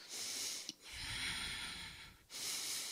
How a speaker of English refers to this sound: What's that breathing? Oh, it must be the sheep over on the other side of the hedgerow.